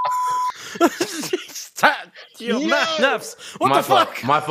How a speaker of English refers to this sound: I'm bleeping all that.